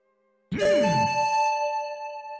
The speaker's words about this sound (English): Was that the doorbell? That was my detect magic. That's what it sounds like.